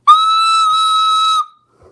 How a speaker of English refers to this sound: What is that? You just blew out everyone's ears. Holy shit. Do you have a whistle on you at all times, coach? No, it's a recorder. A recorder?